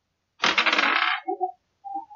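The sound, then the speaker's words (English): Dice clatter and tumble across a table in a quick rattling burst, followed by a few light clicks as they settle, fairly loud. “The dice will determine that one.”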